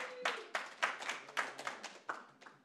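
A small group claps in applause, a quick, uneven patter of sharp claps rising and falling for a few seconds at moderate loudness, with no talking over it.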